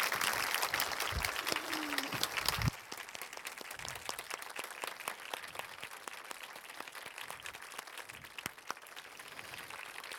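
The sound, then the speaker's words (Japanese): An audience applauds steadily throughout, a dense patter of many hands clapping, sending off a musician at the end of an event launching the Kibō 360 app. It is louder for the first few seconds, then settles to a slightly softer, continuous level. “それではここで…さんを、皆さんで、拍手で送り出したいと思いますので、今日は本当にどうもありがとうございました。”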